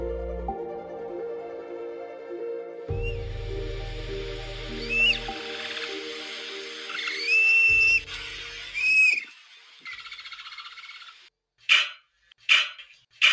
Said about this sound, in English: Definitely a lot of chirping noises. Yeah. And then, of course, a bark there at the end. So a bird dog, maybe?